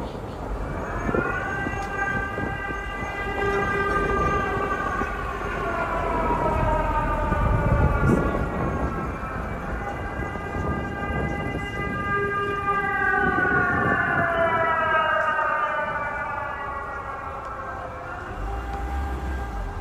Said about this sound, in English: We've got our first air raid siren. Listen.